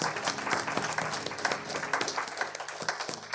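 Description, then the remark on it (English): An audience claps together in a hand clap of praise to God, a dense, steady wash of many hands with sharp individual claps poking through, sustained throughout at a fairly strong level. “Can y'all give God a hand clap of praise today?”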